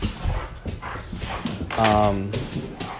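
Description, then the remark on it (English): A dog named Ella, upset at not getting attention, lets out a drawn-out, whiny whimper partway through, a tonal moaning cry rising over softer snuffly noises and faint background rustle. “I would love to hear any questions that y'all have, as Ella is upset that I'm not giving her attention.”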